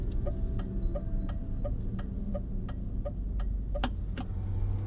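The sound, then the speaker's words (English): A car slows down to a crawl before a corner, rolling along with a low, steady engine rumble, while a sharp, regular ticking, like a turn signal, repeats about once a second over it. No one speaks. “Rob slows the car down to a crawl, a precaution he takes before most corners.”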